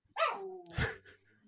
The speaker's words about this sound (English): I don't know how much you can hear my dog. But he's just like, he won't stop. And I don't really understand why he's doing this. He never does this.